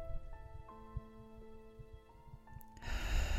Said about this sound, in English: I want you to focus on this place while taking deep breaths in and out. I want you to stay here for 5 minutes or as long as you need to, and I will keep talking your way through. Breathing in